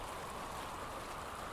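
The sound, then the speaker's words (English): Light drizzle falls in a steady, soft patter, an even hiss of fine raindrops with no voices, constant throughout, after heavier rain has died down. “Rain's died down to a light drizzle, and I can almost see some stars out.”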